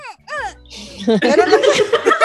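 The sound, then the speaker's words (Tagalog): A voice imitates the soft cry of a newborn baby just after birth with two brief, high, wavering whimpers, followed by louder laughing and vocalizing from people. “Alam mo yung iyak ng baby ko.”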